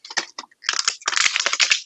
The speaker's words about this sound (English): So everybody getting their personal satisfaction with the crunching of plastic.